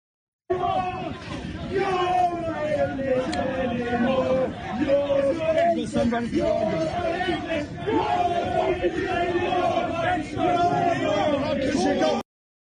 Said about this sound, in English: far right protesters among the counter protesters who battled with police. In one tense scene, a protester was seen shouting in officers' faces. The crowd telling the police, you're not English anymore.